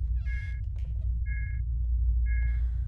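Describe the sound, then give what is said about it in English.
Three evenly spaced electronic beeps, each a short steady tone about a second apart, sound over a constant low rumble. No one is talking. “Sure, nothing bad ever accompanies a strange beeping.”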